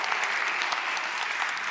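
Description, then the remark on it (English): An audience claps in a steady round of applause for the shepherds as they come up onto the stage, many hands overlapping into a dense, even patter that stays at a constant, fairly loud level throughout, with no voices standing out. “Can we give the shepherds a round of applause as they come up?”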